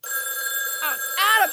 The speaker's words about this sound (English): It's answer the phone's ringing.